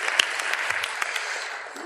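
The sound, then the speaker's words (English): A crowd applauds steadily for the person running the booth alone, dense overlapping hand claps forming a continuous wash of sound with a few sharper individual claps standing out, holding level before easing slightly at the end. “So let's give him a round of applause right there.”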